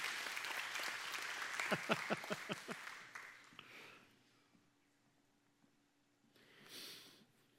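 An audience breaks into applause, a dense wash of clapping with a few sharp, rhythmic claps standing out, then it quickly fades to quiet, followed by a brief soft rustle.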